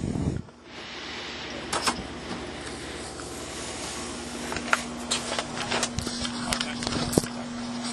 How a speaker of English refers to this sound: Well, it stopped raining. If you're wondering what that raining was, that noise, that's just like the rain going off the trailer.